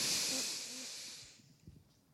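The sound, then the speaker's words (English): A deep, breathy whoosh of air from several people taking a deep inhale together during a guided relaxation, strong at first and tapering off after about a second, followed by quiet with a few faint soft bumps. “Keep breathing in. Breathing out. Taking a deep inhale all together.”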